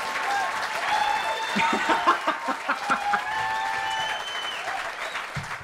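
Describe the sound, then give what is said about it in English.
A burst of applause and cheering from a crowd, played as a sound effect, steady clapping with whistles and shouts layered on top, fairly loud and sustained throughout without any speech. “you're supposed to do the cheering, that the applause”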